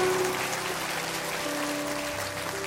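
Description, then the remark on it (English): A church audience claps steadily, a dense wash of many hands applauding at once, with a sustained organ or keyboard chord humming underneath. “Can you clap your hands and say, I love that word.”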